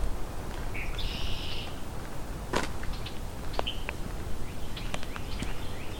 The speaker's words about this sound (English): Blackbirds are showing up.